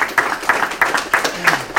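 Steady clapping at a regular, even pace, with crisp claps landing about three times a second, fairly close and moderately loud, with no other sounds competing.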